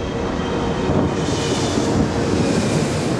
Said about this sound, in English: The door to the jetway closes, and the plane begins to taxi without Peaches and Miss Bag aboard.